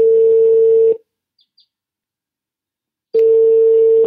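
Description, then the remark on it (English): A Skype call rings out: a steady electronic ringing tone sounds, stops for about two seconds of near silence with a couple of faint blips, then rings again, loud. “I reached him by Skype.”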